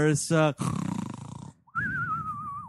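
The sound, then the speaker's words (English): A person fakes a cartoonish snore: a rattling, throaty inhale followed by a long wavering whistle on the exhale, after two short voiced grunts. “I'm gonna actually object to your snore for the first time in this entire podcast history.”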